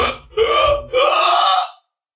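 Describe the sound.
A voice imitates horrible croaks of incineration as a giant cylinder of flame smashes down on a tiny island: three rough, gravelly, belch-like bursts in quick succession, loud and throaty, the last one drawn out longest before falling silent.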